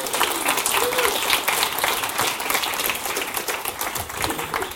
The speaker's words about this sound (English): Just give him a round of applause as he comes up.